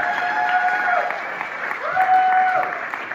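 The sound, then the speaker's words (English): Comedy club audience applauding a comedian steadily, a dense crackle of many hands clapping at an even loudness, with a couple of sustained whoops rising over it. “You clap more for Kyle than you did for me.”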